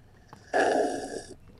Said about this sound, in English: And I will match you with my slurping coffee. Ready? Oh, coffee. Are you being healthy, you fuck? No. Oh, you better have some alcohol down there. I will now sip my beer. Okay.